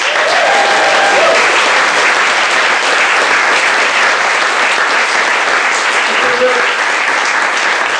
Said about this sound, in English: Thank you so much to everyone who shared stories anonymously and everyone who told stories on stage. Big round of applause for all of them.